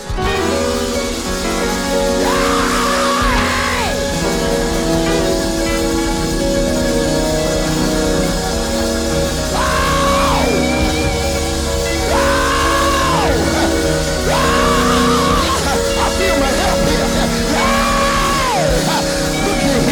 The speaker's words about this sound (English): But I dare you to scream in this atmosphere.